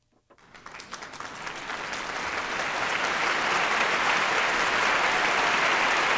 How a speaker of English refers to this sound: I don't know why I'm applauding. That was just kind of dark, actually.